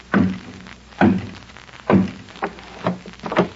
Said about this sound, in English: Gad, look at that door. Just a big eye, all staring at you. Just a peephole in the middle. What a slimy setup. I'll knock.